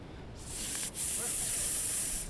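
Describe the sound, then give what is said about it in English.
A steady, bright hiss starts abruptly, breaks off for an instant, then resumes and holds continuously at fairly even loudness, like gas or spray escaping. No one speaks. “As the earth settles around you, you both can hear a hissing sound.”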